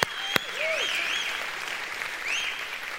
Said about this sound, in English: If you believe we serve an overcoming God, I want to hear your round of applause today. Come on, folks.